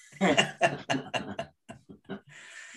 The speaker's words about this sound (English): So, I get a bit out of breath and I cough a little bit. Yes, yeah. It's not because I smoke 50 a day. It's because of corona.